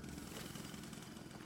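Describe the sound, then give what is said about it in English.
A railroad company's steam drill runs steadily and loudly on tunnel work, a dense, continuous mechanical roar with a rapid rattling texture and deep low rumble, unbroken throughout, with no voices. “Then one day, the railroad company brought in a steam drill to speed up work on the tunnel, as certainly this new mechanical wonder would produce results faster than any man ever could.”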